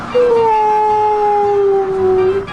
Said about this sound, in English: This is a very unfriendly wind. Just then, a big gust of wind blew Piglet up into the air.